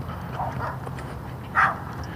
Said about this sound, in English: Dogs barking now at each other. Probably wake up the wife.